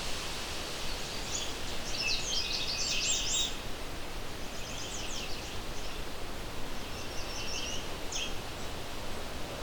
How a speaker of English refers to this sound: Back to the Canada warbler.